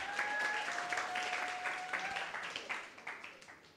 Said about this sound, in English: come on, give her a clap.